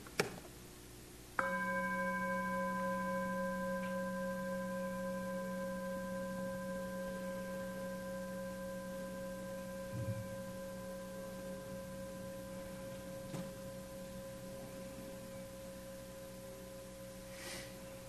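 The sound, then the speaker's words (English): A single meditation bell is struck once, producing a bright, layered ring of steady tones that hangs in the air and slowly fades over many seconds, with no talking. “The sound of the bell, which I will ring now, just noticing it coming and going.”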